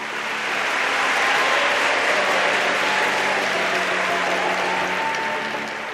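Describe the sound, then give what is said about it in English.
Thunderous applause from a large audience of students in the Yale University concert hall at the end of a lecture: dense, continuous clapping that swells in, holds steady and loud for several seconds, then eases off slightly. No one speaks. “That tiny, polite ripple of applause you might get at the end of a lecture? Well, it turned into this.”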